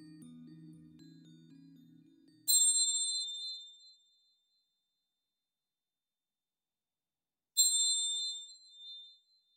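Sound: meditation chimes ringing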